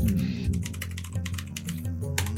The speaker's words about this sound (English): Oh, he's typing.